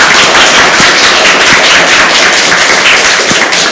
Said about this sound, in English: All right, just by a round of applause. Ketchup on a hot dog, yes or no? Hands up for, or clap for yes.